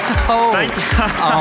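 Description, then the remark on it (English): A cheering sound effect faded in at the end of music: a dense, steady swell of many voices cheering and shouting at once, with overlapping high whoops and yells sustained at an even, loud level throughout. “Okay, bring up the cheer fader.”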